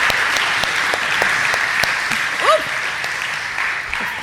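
An audience claps steadily, a dense crackle of many hands with sharp individual claps popping out, and a brief whoop or whistle rising above it midway.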